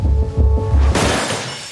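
A mirror is smashed to pieces: a few dull low thumps, then a sudden loud crash of breaking glass whose bright, scattered tinkling fades over the following second.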